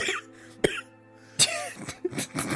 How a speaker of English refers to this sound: Are you okay? You've been coughing a lot today.